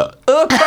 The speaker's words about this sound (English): And hold on, this monster drink's repeating. It's going to burp. Go on, go let it out. In the mic.